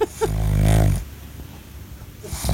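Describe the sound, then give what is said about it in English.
A pug snores while lying on a couch, a loud rumbling inhale with harmonic buzz followed by a quieter wheezy exhale, then the next snore begins at the end. “This is him laying on the couch while I'm watching TV.”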